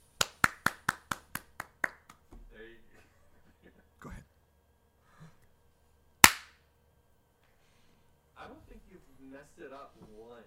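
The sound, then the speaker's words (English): About eight sharp hand claps in a quick, steady rhythm, growing slightly softer, then people talking quietly, broken by one louder single crack partway through. “You want me to clap? Yeah, go ahead and clap.”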